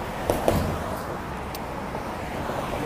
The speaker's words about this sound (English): Now, is this my bus? Oh no, it's a charter bus. Oh, Sam Limousine Service. Sam's Limousine Service.